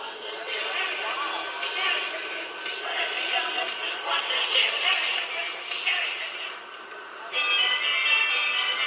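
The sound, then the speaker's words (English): A train bell rings steadily against a busy, hissing rumble, a continuous metallic chiming that grows brighter and louder near the end, with faint indistinct voices in the background. “It's a nice train there”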